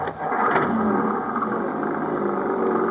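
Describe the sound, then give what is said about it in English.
An old jeep engine catches and roars, its rough, loud rumble holding steady as it revs and pulls away, with no voices over it. “And Mac's old Jeep would have put a mountain goat to shame.”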